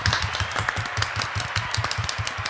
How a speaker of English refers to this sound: golf clap.